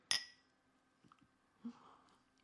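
Champagne glasses clink once in a bright, high ringing chime that fades quickly, followed by a few faint soft knocks and a low thump.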